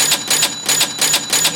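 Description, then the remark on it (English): A cash register bell rings with a sustained high metallic tone over rapid, rhythmic mechanical clacking bursts, fairly loud, with no voices. “With our cash register bell, yes.”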